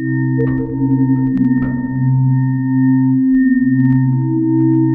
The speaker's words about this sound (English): Like, because it seems like sometimes you have really pure tone sounds, more like sine waves.